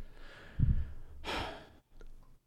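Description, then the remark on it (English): A short, sharp intake of breath followed by a breathy puff of air exhaled from a person's mouth, with no speech, then quiet. “God, the gasp, that inaudible puff of evil came out of your mouth when you said that”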